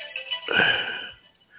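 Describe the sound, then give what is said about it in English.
A phone ringtone sounds in a short, bright electronic burst with a warbling tone, loudest midway through before fading, with no voices present. “Yeah, all this time, the phone did not ring. Now it decided to ring.”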